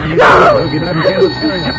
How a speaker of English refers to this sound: That's the phone